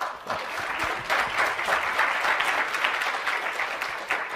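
An audience at a presentation claps steadily for several seconds, a dense, even patter of many hands at moderate loudness with no voices standing out.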